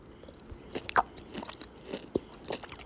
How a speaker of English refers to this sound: I'm sorry if you hear me chewing. I don't think you can chew this quietly. It's, like, gummy.